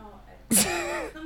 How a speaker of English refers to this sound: Why are you yawning?